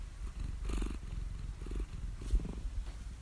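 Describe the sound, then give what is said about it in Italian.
A cat lying on a bed and looking around purrs softly, a low rumbling buzz that swells and fades in rhythmic breaths, with no talking over it. “Ora Mazinga è sul letto, si guarda attorno e fa delle leggere fusa”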